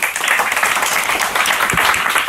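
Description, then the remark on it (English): A crowd applauds steadily to welcome a newly commissioned church planter coming up to the front, many hands clapping in a dense, even wash of sound that holds at a fairly loud level throughout, with no voices standing out. “why don't you come on up as you all receive him with a warm applause.”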